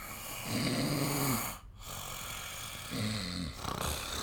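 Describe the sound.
Someone imitates loud snoring: two long, rattling snore sounds about two seconds apart, forceful, with a short quiet breath between them and no talking.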